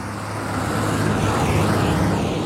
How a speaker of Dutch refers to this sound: Wacht even, er komt een trekker aan.